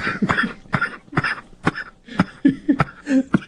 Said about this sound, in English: It's not great for the cough.